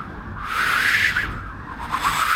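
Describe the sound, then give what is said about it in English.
A voice imitates whistling wind: a steady, breathy whoosh with a wavering, airy tone that rises and dips over a couple of seconds, with no talking. “I need the whistly, like performed wind that's like.”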